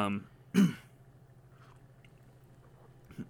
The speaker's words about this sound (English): Again, sorry, listeners, for me clearing my throat.